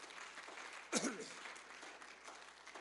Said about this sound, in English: Would you clap your hands to the Lord tonight?